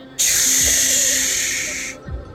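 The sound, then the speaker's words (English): A spaceship door rises and hisses open with a loud, steady burst of airy hiss lasting almost two seconds, then cuts off, followed by a soft low thud. “The door rises and opens”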